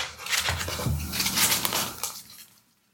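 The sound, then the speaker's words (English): The spades of a deck of playing cards, plus one joker, being shuffled for a game: about two seconds of rapid, crisp fluttering and riffling, then a quick fade to silence. No voices. “And now we shuffle... our spades include one joker.”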